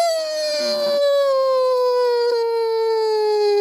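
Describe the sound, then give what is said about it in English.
A voice imitates the worried whimper of the character Reagan: one long, loud, high-pitched whine that holds steady and slowly droops in pitch over a few seconds, with no words spoken. “Reagan just makes like a worried whimper”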